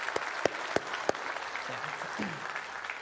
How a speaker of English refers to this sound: can we just give a round of applause for the youth leaders? Without this, none of this is possible